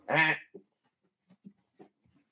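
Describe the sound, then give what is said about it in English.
A dog chews a child's squeaky toy: one loud, nasal, honk-like squeak, then several faint, irregular soft squeaks and clicks. No one speaks. “Sorry, my dog's chewing on my kid's stuff here.”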